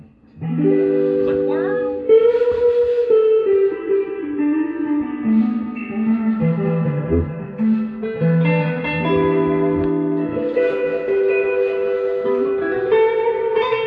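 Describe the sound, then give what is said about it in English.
Guitar chords ring out through a Fender reverb pedal, each note swelling into a washy, lingering tail that blurs into the next for about fourteen seconds, played alone at a steady, moderate level. “Is that your Ottawa? That's my Fender reverb.”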